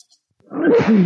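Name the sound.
sneeze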